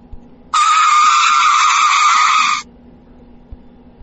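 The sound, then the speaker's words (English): A loud, shrill screech of car brakes cuts in abruptly and holds for about two seconds before stopping short, standing alone against a quiet background. “I had to pump the brakes.”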